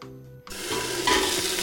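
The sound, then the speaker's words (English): Soaked seaweed sizzles loudly in hot sesame oil as it is sautéed for a few minutes as the first step of cooking a soup, a bright, steady crackling hiss that bursts in after a brief quieter moment, with faint stirring and scraping underneath. “First, we're gonna saute our seaweed in sesame oil.”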